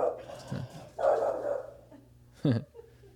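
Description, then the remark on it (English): A dog barks a few times, with short bursts spaced irregularly, the last one sharp and loud, over a low steady background hum. “I don't know what he's barking at.”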